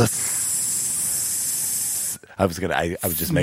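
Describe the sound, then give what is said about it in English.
A voice imitates a snake's hiss with a long, steady hissing breath lasting about two seconds, followed by a brief pause and then someone speaking. “I'm a snake.”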